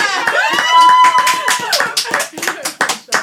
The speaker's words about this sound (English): You lot stop the clapping.